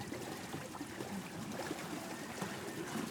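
Steady rushing and churning of water as a boat cuts through a river in the Mekong Delta, Vietnam, with a constant wash of splashing and trickling and no voices.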